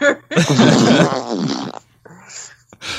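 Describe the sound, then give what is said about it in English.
A loud, drawn-out creaking squeak from a chair, sounding rather like a fart, lasting over a second, followed by quieter rustling and a brief noisy burst at the end. “I have the worst chair.”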